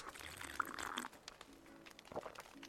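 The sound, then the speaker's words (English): Hot cocoa is poured into a cup, a bright, splashing gush for about a second, followed by a few softer trickles and small liquid sounds as the pour tapers off. “The hot cocoa.”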